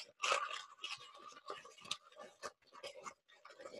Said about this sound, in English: I'm taking a piece of paper. This is just standard paper. And I'm going to crumple it. Yep. And I'm thinking about, I'm giving my intent while I'm crumpling it.